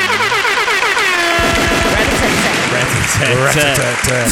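Loud, continuous burst of crowd applause mixed with blaring air-horn blasts and cheering, a dense celebratory din lasting about four seconds with no pause, given as a round of applause for an artist's newly released music.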